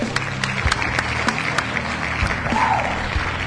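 Steady, dense applause with many overlapping claps forming a continuous crackling wash at an even level for about three and a half seconds, with no talking.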